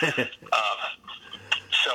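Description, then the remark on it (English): A large dog pants in quick, breathy bursts, with short pauses between each run of rapid huffing breaths. “Bruce, no. I have a big dog.”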